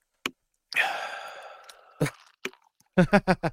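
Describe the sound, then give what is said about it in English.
A drink is sipped: a wet click, a long breathy slurp or exhale that fades, a couple of small mouth clicks, then four quick, evenly spaced gulping sounds. “Takes a sip.”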